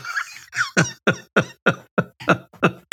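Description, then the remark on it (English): A rapid series of about nine loud, sharp coughs into a microphone, evenly spaced, each burst harsh and slightly squeaky with a falling pitch, and no talking. “Just stop coughing into the microphone because it's loud.”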